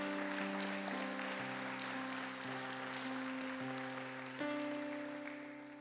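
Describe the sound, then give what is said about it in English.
Steady applause from a crowd, a dense continuous patter of clapping, runs throughout while sustained keyboard or organ chords hold and shift underneath. No one speaks. “Can you clap for that?”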